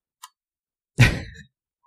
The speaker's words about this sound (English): Oh, stop typing. Okay, our listeners can hear you typing.